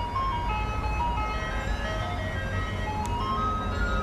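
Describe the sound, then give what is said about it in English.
An ice cream truck's tinkly jingle plays a steady looping melody over a low engine rumble, fairly loud and continuous, with no one talking. “Oh, here comes the ice cream truck again.”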